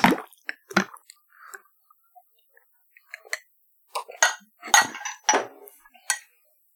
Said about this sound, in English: All right, so a heritage ensemble is where you take a shot glass that's half Bailey's and half Jameson's, and you drop it into a glass of Guinness, and then you just drink the whole thing, and it's good. We're going to do that right now.